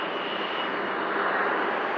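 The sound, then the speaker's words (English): A private jet with about six windows flies in, its engines roaring steadily overhead, a dense, even rushing noise that stays loud and unchanging throughout, with no voices. “It's a freaking private jet. With like six windows.”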